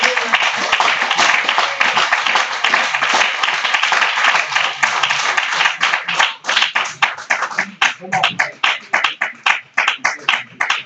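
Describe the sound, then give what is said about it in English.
A crowd gives God a hand clap, clapping in a dense, sustained burst that thins out after several seconds into scattered, uneven individual claps before fading. “Won't you give God a good hand clap today?”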